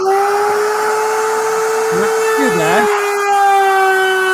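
A loud, steady high-pitched whine of a power tool cutting through material on a live demonstration, a top wheel rolling along to keep the cut flush, holding one sustained tone with harmonics throughout, while a voice briefly talks underneath partway through.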